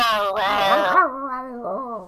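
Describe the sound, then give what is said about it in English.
A dog whimpers in one drawn-out, whiny cry whose pitch wavers up and down, then trails off into a softer, lower whine. No one speaks. “I know, but the dog is actually reacting.”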